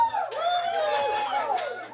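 Steady audience chatter in a room: many overlapping voices of the crowd talk at once, turning to each other in a continuous, fairly loud murmur, with no single speaker standing out, and a few brief sharper bursts over the babble.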